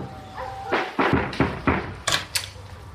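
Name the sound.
knocking on a door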